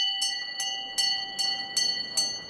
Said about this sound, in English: Every time there's an emergency, you hear the bell ring. It gives you a sinking feeling, a feeling of anxiety, because you never know what's going to be coming in.